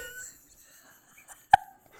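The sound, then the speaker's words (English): A single short, sharp cough, made deliberately by a voice as an imitation. It is one abrupt voiced burst with a slightly tonal, hiccup-like edge, set against quiet background murmur. “Is that not how you cough?”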